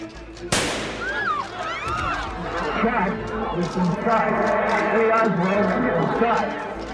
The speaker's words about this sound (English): Jack Ruby leaps from the crowd, firing a pistol into Oswald's stomach.